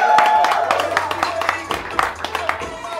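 A round of applause from a group, with many overlapping hand claps forming a dense, steady patter that holds at a fairly loud level for several seconds, over a low steady hum.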